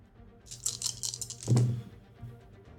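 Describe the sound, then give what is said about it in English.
A handful of dice rattle sharply for under a second, then land with a dull thud on a table, moderately loud, with no voices. The dice are rolled for a difficult check in a game. “All right, let me roll his dice full here, but this is going to be a pretty difficult check for him, but he gets to upgrade one of them.”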